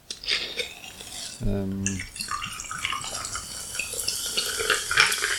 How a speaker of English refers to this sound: I do love that sound. It's the kind of the clinking of the ice, which you possibly don't get with the one big ice cube. It clinks on the side of the glass.